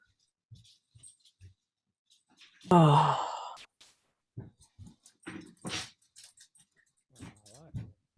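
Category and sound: animal, dogs barking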